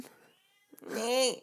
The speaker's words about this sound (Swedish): Det där är alltså en katt, bara som vet. Ja. Men låt Persson komma in så kan jag mysa med honom.